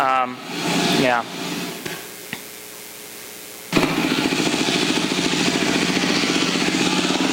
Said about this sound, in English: So I'm just going to show a quick video here of a takeoff that I did just so you can sort of see what it's like. And this is our home base.